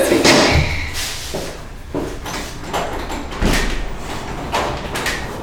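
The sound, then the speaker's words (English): A door is opened to answer it, with a series of clunks, rattles and soft thuds spread over several seconds against a low background hum. “So do you need to answer the door?”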